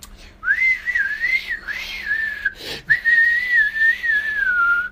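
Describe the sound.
A person whistles a continuous, wavering melody imitating a man playing the flute aggressively, fairly loud, with a brief break near the middle before resuming steadily; no talking.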